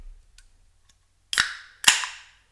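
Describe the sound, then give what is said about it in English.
A beverage is opened: two sharp cracks half a second apart, each trailing off into a brief fizzing hiss, preceded by a couple of faint ticks. No one speaks. “I haven't even opened mine yet. Well, open it then.”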